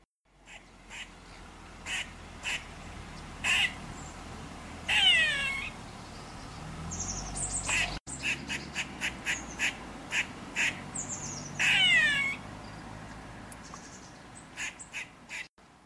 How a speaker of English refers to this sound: I'll cut in cross / scared squirrel now.